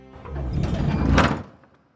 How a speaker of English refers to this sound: The door closes.